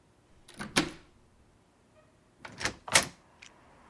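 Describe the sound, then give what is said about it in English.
A door is opened with a couple of clicks and thumps of the latch and handle, then a louder clunk and rattle a few seconds later, with no talking. “Please, open the door.”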